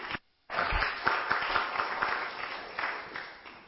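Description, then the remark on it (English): An audience in a hall claps after a brief pause, with only about half of those present clapping. It is a dense, steady patter of many hands that holds at a fairly even level and tapers slightly toward the end, with no talking over it. “Only about half of you clapped because of the other half doing the stuff, weren't they?”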